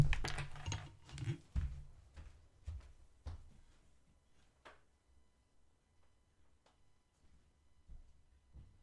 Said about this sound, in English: Sorry about that. We had a little incident. I think Bristol jumped up on the chair and he almost knocked over a glass.